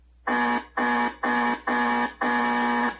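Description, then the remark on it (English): A loud, harsh electronic buzzer sounds five times in quick succession, each blast about half a second long with brief gaps, the last one held a little longer. No voices. “My first reason for all that buzzers was the question itself is flawed.”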